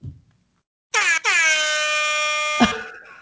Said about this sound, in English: The two nice ones, you know, just a celebratory air horn instead of like a, oh, the party's starting kind of air horn.